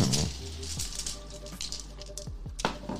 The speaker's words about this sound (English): Just going to roll some dice.